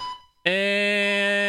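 A timer goes off with a loud, steady buzzing tone that starts abruptly after a brief quiet moment and holds without a break, harsh and rich in overtones.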